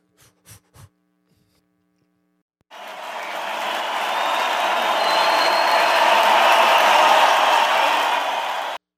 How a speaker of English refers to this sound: I just love people cheering you on when you're eating the hottest wing.